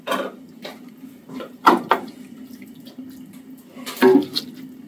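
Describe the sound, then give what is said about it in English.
Thick bolognese sauce is spooned into a pan, with a few wet plops and scraping clinks of a utensil against metal over a steady low kitchen hum. “Now the bolognese.”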